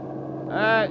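A bus engine rumbles steadily and grows slightly louder as it draws near, with a loud, strained tonal cry rising over the drone for a moment near the end, as someone calls on the bus to stop.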